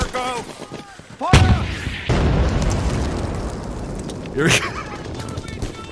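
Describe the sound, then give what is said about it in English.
A brief shouted voice gives way to a loud blast of artillery in war footage, then a steady roar of battle noise and gunfire with another sharp gunshot-like crack near the end. “And James O'Keefe has to run through gunfire to alert them that, hi, I will be taking over now.”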